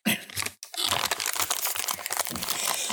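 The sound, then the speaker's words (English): Continuous crinkling and crackling of a cough drop wrapper being unwrapped, dense irregular crackles after a brief pause, with no talking. “That crinkle crackle of cough drops.”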